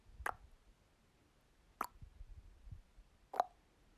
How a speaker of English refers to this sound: Some of us will do this by taking the tongue to the top of the mouth and letting it lower to the bottom of the mouth, making a small little ping of joy. Can you cluck a little louder? Maybe a little bit softer.